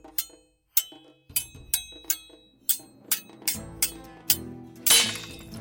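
Swords clash in a fight: about ten loud metallic strikes ring out in an uneven flurry, ending in a harsher, grinding clash.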